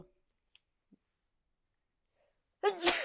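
After a few faint ticks and near silence, a single loud sneeze bursts out near the end, a sharp breathy blast with a voiced edge.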